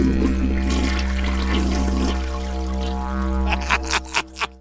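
A toilet flushes with a steady, rushing wash of water over a low hum, then ends in a quick run of four gurgling, sputtering bursts as the tank refills.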